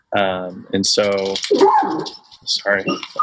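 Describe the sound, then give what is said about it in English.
A dog lets out a few loud, drawn-out barks mixed with whimpering whines, coming in short bursts separated by brief pauses. “Some kind of dog or mailman or something.”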